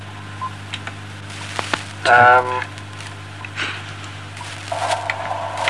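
Steady radio static hisses and crackles throughout, broken by sharp clicks, a loud burst of warbling tones near the middle and a low electrical hum underneath.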